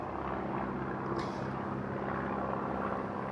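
A steady, droning airplane engine roars overhead, a dense low rumble with a propeller-like hum that stays loud and constant throughout, with no voices.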